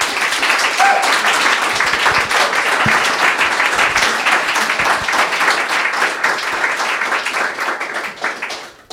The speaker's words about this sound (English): A powerhouse indeed. Help me by giving a big round of applause